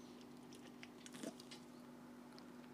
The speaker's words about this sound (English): Sip of my beverage.